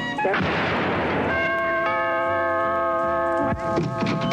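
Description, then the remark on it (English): A sharp, loud bang as a doorbell is shot, followed by the doorbell ringing in a steady, sustained electronic tone for about two seconds, cut off by another abrupt crash. No one speaks. “Damn it, Clinton, I told you, don't shoot the doorbell like that.”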